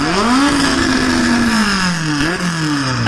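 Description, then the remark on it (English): A Brabham racing car engine revs loudly, its pitch climbing, holding steady, then briefly dropping before rising again with a gear-change-like hitch, with no one speaking. “That's what it sounds like, doesn't it? Obviously, it does perform so well, the Brabham 4”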